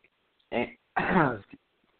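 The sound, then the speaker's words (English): A person coughs and splutters after a sip of water went down the wrong pipe: a short harsh burst, then a longer rasping one and a small catch at the end, with no talking around it. “No, I just took a sip of water, and I miscalculated.”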